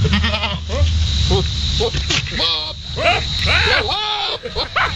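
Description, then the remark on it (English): A male goat, pursuing a female that is trying to avoid him, lets out loud, wavering, human-like yells in several strained bursts, with a steady low hum underneath. “You mean to tell me that is not a human yelling right there? That is a goat?”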